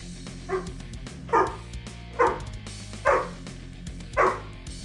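A dog barks five times at a steady, evenly spaced pace, each bark loud, over a continuous low hum or music bed.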